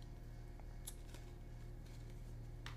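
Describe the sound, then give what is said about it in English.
Faint, scattered snaps and rustles as a deck of cards is shuffled before three cards are chosen, a few brief papery bursts spread over a few seconds against a steady low background hum, with no talking. “Shuffling the cards, and I'm going to choose three cards very quickly.”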